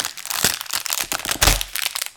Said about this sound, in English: Oh, and you heard the tearing.